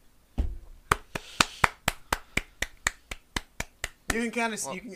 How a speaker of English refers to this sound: You can kind of hear me clapping. The mic is 1000% hearing me big clap.